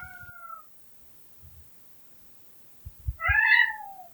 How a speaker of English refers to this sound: Meet Ross, my roommate's cat. Ross is often stressed out, as you can probably hear. We have noisy upstairs neighbors, the sounds of which have given Ross an anxiety disorder.